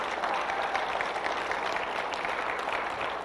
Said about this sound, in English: Somebody give Jesus a clap offering. Amen. Hallelujah.